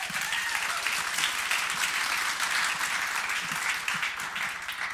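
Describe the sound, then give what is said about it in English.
A church audience applauds steadily for the full five seconds, giving God praise for the church going to three services: a dense, even wash of clapping with scattered cheers and voices rising underneath. “And we don't cheer for that because we have more seats in the room.”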